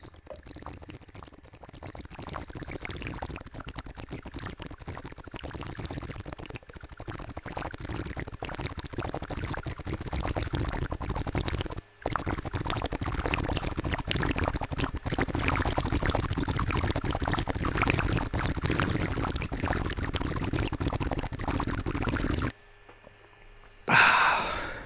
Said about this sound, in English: All right, let me get one more sip of water.